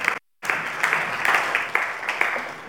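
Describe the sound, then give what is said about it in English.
A room full of people claps steadily for a band after songs at a worship service, a dense wash of applause with a brief silent gap near the start, then sustained even clapping from the crowd. “I think they deserve a round of applause because I think they've been amazing.”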